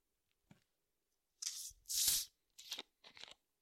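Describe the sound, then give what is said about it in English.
A home-brewed Coopers Irish Stout from a kit being poured from a bottle into a glass: four short bursts of hissing, splashing liquid noise, the second the loudest, with a faint tap beforehand and no talking. “So just pouring one of the last bottles left of the Cooper's Irish Stout Kit Brew, which I did just before Christmas, I think.”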